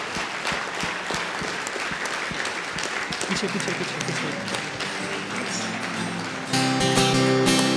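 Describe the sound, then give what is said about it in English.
A large audience applauds loudly and steadily for the AINA student volunteers coming on stage, dense clapping for several seconds before music with a strong tonal chant swells in at the end. “So I would like to request all the AINA volunteers to come on stage so that they can just, we can give them a big round of applause.”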